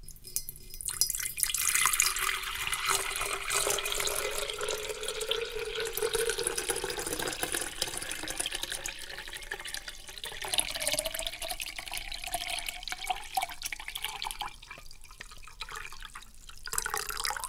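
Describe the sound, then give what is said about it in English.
Water pours steadily into a pitcher, the tone rising gradually as the vessel fills, a continuous splashing and gurgling with no talking. “That's a pitcher being filled. That's a pitcher of water.”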